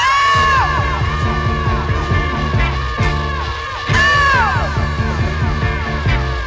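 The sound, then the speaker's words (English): A loud, raw vocal scream kicks off a reggae track, with further yells and whoops riding over the steady bass and rhythmic backing. “It just hasn't got the big intro into it, you know, all the chat. Starts with a scream.”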